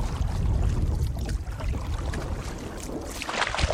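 A canoe moving up a river, with steady rushing and splashing water over a constant low rumble, continuous throughout, with no voices.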